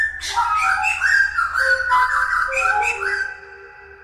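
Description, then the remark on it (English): A thrush sings bright, whistled phrases while a musician plays sustained, melodic notes alongside it, the two voices weaving together before fading out near the end. “Okay, so that was his encounter with a thrush.”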